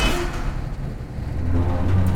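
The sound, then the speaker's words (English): Goldie pushes open the heavy door of a large warehouse with a steady, grinding rumble that deepens into a low, droning scrape near the end. No voices. “Goldie pushed open the door to the warehouse.”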